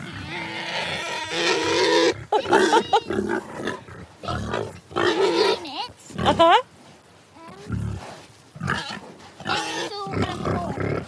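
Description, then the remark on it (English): Three female pigs, Enid, Ethel and Maud, 7 or 8 months old, grunt and snort in rough, irregular bursts, some loud and throaty, while a couple of people exchange a few brief words in between. “which pig's which?”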